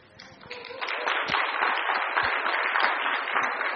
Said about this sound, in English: Don't clap. I told her we have to vote on this.